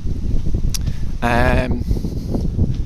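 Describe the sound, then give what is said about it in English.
Gusty outdoor wind, getting stronger, buffets the microphone with a steady low rumble throughout, broken midway by a brief, higher-pitched tonal whine that fades after about half a second. “It's getting windy, isn't it?”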